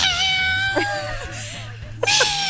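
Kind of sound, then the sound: animal, cat yowling loudly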